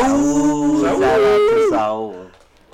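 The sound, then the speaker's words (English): A man's voice howls like a wolf, one long sustained cry that holds a steady pitch, swells, then slides downward and fades out over about two and a half seconds. “That sounds like a wolf.”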